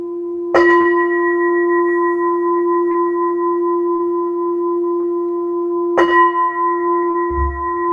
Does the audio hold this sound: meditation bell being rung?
yes